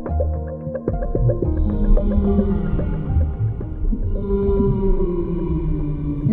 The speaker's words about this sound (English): And that was Whale Song, so I'm going to make a wild guess here and say that this week's animal is a whale?